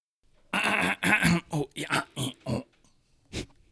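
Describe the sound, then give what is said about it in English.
A squeeze box sound effect: about seven short, wheezy, grunting bursts in quick uneven succession, fairly loud, then a brief pause and one final squeeze. “It's the squeeze box sound.”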